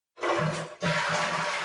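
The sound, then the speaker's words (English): A toilet flushes with a loud rush of water that briefly dips before surging again, filling the short moment with no voices. “Speaking of flush, should we do that real quick?”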